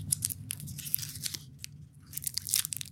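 Crunching on a hard Burt's Bees lemon drop cough drop, a run of sharp, brittle cracks and grinding chews repeating unevenly over a low rumble, with louder bursts at the start and end.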